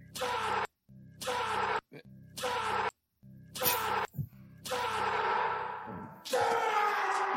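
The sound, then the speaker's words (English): A man's voice in a played film scene lets out a series of loud, drawn-out groans, each burst separated by brief pauses and trailing into a heavy, cavernous echo. “It's such a great echo.”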